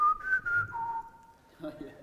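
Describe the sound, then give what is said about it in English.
A clear four-note whistled call sign, rising then stepping down to a long held final note, followed by the faint start of someone speaking. “And whenever somebody does the whistle, which is...”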